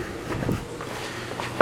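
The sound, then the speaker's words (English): Soft footsteps walk at a steady pace from work to the car, several muted steps in a row, ending with a sudden louder clunk. No one speaks. “As I walk to the car from work, going through a door, going through another door, and we're outside.”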